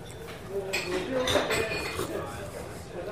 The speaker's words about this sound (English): So, have a little sip of coffee here just a second. Starting to get dry.